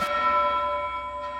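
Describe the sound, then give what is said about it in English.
A single church bell note rings out above a forest with a sharp strike, then sustains and slowly fades, its bright overtones hanging in the air on their own with no voices present. “A single note from a bell kind of loft above the forest.”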